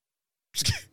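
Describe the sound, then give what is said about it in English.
A single sharp sneeze bursts out after a moment of silence, short, with a breathy, hissing edge as it fades. “You got a dab sneeze over there.”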